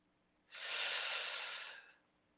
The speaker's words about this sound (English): Let's do that one more time together. Inhale.